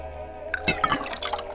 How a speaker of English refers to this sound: Yeah, well, I'm going to pour myself a glass of water.